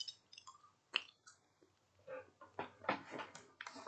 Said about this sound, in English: And I'm not sure that y'all really want to sit here and listen to me eat a jelly bean. But since today is an experiment, let's find out. Let's see if you guys will sit through me eating a jelly bean.